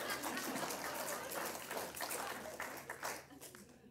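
crowd, audience golf clap

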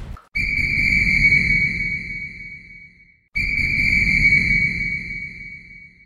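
signal or alarm, whistle being blown

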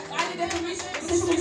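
crowd, clapping

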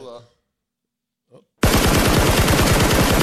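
sound effect, gunshot sound effect

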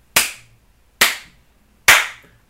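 human body sound, hand slaps

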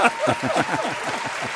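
crowd, audience applause and cheering

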